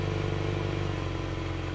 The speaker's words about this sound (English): He turns the car over and you hear a rumble of the engine start up in this little space.